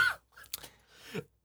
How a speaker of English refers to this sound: Oh, my God. Go down the wrong pipe there? No, I just cough whenever I drink Verner's. Okay, what? I don't know why.